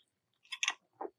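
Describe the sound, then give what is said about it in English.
A sip of a Tom Collins cocktail from a glass: a brief airy slurp followed by a softer, lower swallow a moment later, with no talking around it. “I'm going to take another sip of my Tom Collins.”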